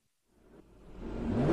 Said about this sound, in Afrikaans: Dit sal hulle nie terugbring as jy die kar so sit en ref nie.